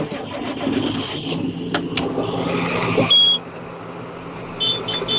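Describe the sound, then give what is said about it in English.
A tractor's heavy diesel engine cranks and rumbles into a steady low idle, while short high electronic beeps chirp several times over the drone. “Well, I got to start my tractor.”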